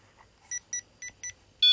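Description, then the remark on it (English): A REM pod ghost-hunting device, just switched on, beeps four times in a quick, even series of high electronic tones, followed by a louder, sustained beep at the end. No one speaks. “And I'll turn on the REM pod.”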